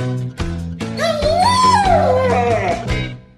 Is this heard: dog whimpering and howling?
yes